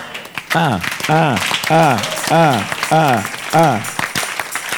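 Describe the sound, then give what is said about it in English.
An audience in a church claps steadily and loudly while a voice repeats a rising-and-falling shout about six times in a regular rhythm over the applause. “All those who are clapping, I see the Lord multiplying you.”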